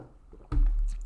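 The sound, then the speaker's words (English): After a quiet moment, a sudden heavy swallowing sound of someone drinking water, with a muffled low gulp and wet sloshing that fills the rest of the short clip. “let me get my regular episode yawn out of the way. And drink my water.”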